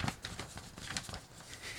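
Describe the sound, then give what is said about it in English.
Paper notes for a show being shuffled and handled, a continuous soft rustle of crisp, dry crackles with brief brighter flicks, fairly quiet and steady, with no voices. “And you hear the shuffling of it and everything, you know?”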